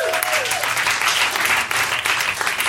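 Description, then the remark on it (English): A crowd applauds steadily, a dense wash of many hands clapping at once, loud and sustained from start to finish without letting up. “Clap your hands, ladies and gentlemen.”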